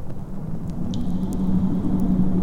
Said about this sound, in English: Storm's getting worse.